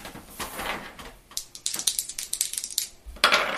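Dice clatter across a hard tabletop in a quick, irregular burst of sharp clicks and rattles, fairly loud, with a brief rustle before and a final tumble at the end; no one speaks.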